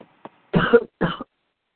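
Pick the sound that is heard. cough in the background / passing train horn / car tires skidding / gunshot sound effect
cough in the background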